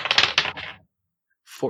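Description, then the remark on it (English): Dice rattle and clatter across a table for a perception roll in a quick cluster of sharp clicks lasting under a second, then silence, then a brief voice at the end. “Oh, I rolled an 18!”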